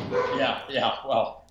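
A dog barks three times in quick succession, fairly loud and close, each bark sharp and slightly yelping, with short gaps between them before the sound fades out.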